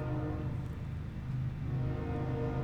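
A passing train, heard off in the distance, gives off a steady, loud low rumble with a sustained, droning horn-like tone layered over it, continuous for the whole stretch with no talking.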